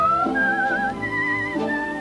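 A person whistles a slow melody in clear, sustained notes that glide and step between pitches, carried over a soft, steady orchestral accompaniment, from the 1951 film Royal Wedding.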